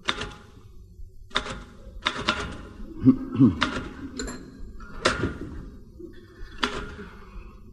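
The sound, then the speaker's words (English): Irregular mechanical typewriter keystrokes clack in short bursts, with sharp strikes and a faint carriage ding, fairly loud, with no talking, as party invitations are typed out in Tony's flat in London's West End. “Haven't you finished typing out those invitations yet?”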